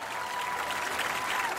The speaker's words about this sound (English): On the final day, Cliff passed through Melbourne as thousands lined the streets to cheer him towards the finish.